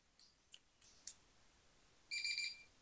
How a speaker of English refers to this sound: Your timer is up.